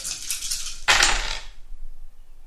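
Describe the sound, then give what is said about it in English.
Seven dice are rattled and then tumble out onto a hard surface in a loud clatter that quickly settles, with no voices. “So, 7 dice.”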